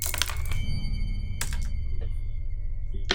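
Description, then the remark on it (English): Dice thrown for a roll in a tabletop role-playing game clatter in a quick burst of sharp rattling clicks, followed by a few separate knocks as they settle, over a steady low hum with no one talking. “Roll for me.”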